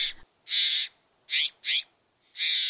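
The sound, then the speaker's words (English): Mexican jays give a series of loud, harsh, raspy calls along a hiking trail in a mountain park, about five short bursts in quick succession with brief gaps between them, without any talking. “Mexican blue jays.”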